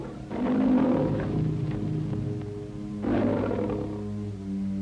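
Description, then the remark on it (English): A lion named Major roars twice in a movie scene, each a loud, deep, drawn-out rumble with a strong low growl, the second beginning about three seconds after the first; no one speaks. “What's that? Oh, that's Major, my lion.”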